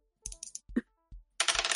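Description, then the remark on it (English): Dice clatter onto a hard table in a quick series of sharp clicks and knocks, then rattle and roll briefly before settling, rolled as a voodoo roll. Fairly loud, with no voices. “So then, yes, roll me a voodoo.”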